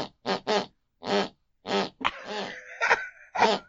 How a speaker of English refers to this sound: My mother's snoring. Happy birthday. Oh. Do you know why my mother's snoring happy birthday?